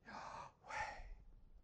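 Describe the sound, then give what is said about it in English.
A person takes one exaggerated, audible breath in and then breathes out, two airy, whooshing breaths in quick succession with no talking. “So it's been even considered that the name of God is breathing in and breathing out.”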